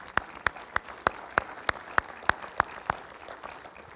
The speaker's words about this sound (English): Yeah, I need to applaud you.